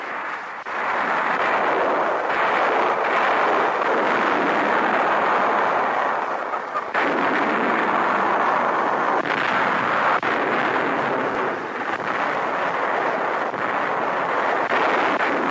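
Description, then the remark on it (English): Heavy gunfire from naval guns dueling with enemy coastal artillery and blowing up emplacements on the shore merges into a continuous loud, rumbling roar, with a few sharper booms punching through, including a sudden break around the middle. No voices are heard. “Guns dueling with the enemy's vaunted coastal artillery blow up emplacements on the shore.”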